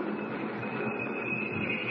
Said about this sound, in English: Train's slowing down. Coming into a station, I guess. Yep.